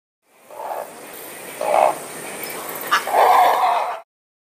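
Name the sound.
great blue heron call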